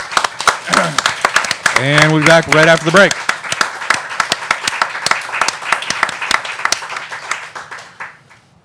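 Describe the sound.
A crowd applauds on WLPN Lumpen Radio, Chicago 105.5 FM, with dense, sustained clapping throughout, while a man's voice speaks briefly over the start before the applause carries on alone and gradually thins out.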